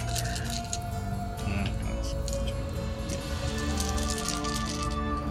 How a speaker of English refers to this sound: We're in trouble now. Too many dice.